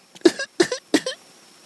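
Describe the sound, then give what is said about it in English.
A voice imitates a young kid coughing after one pull on a cigar: three quick, evenly spaced coughs, each a short voiced burst, moderately loud, followed by a brief quiet pause. “He was coughing like a little kid.”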